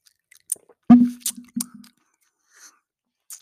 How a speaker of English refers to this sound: So y'all hear the ice in the background, you know, that's my drink. Just telling y'all. But I'm going to take a sip of it real fast because I tasted when I made it. But I want to taste it while I'm doing this podcast. So hold on.